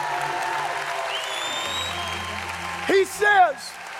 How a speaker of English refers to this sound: oh, come on, you need to clap.